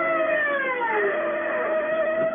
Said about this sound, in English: The siren gouges a path through the city swiftly like a wild saw swaying across the dark. And you ride it. Inside of you, you're screaming with it.